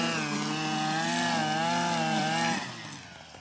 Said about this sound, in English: the person running the weed whacker, you know, they got ear protection on. They don't really know how loud and annoying it is to all the other creatures in existence in the vicinity.